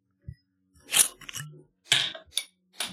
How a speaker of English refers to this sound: Drop that on the floor.